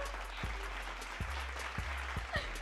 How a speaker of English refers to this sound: I'm going to put some applause right there